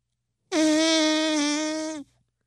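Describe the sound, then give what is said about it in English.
A single loud, drawn-out fart sound, brassy and buzzy with a steady low pitch, holding for about a second and a half before cutting off abruptly. No voices accompany it. “Was that a arm fart sound, or did someone just, like, blatantly rip ass? I blatantly ripped ass.”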